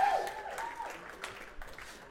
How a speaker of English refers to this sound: Do you guys know David running sound? He's so good. Let's give David a round of applause.